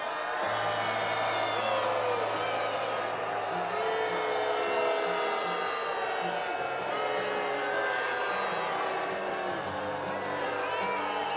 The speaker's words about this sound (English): He got booed off fucking stage.